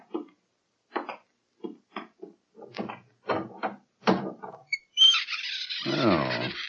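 A crude, unlocked door made of new wood rattles and knocks in a series of short, uneven bumps, then swings open with a long, loud, groaning creak.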